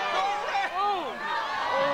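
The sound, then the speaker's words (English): A crowd of people reacting as the end of a traffic light pole punctures the top of Rudolph's head, many overlapping voices rising and falling in pitch at once, a steady, fairly loud mix of exclamations and murmuring with no single clear speaker. “Listen to the people.”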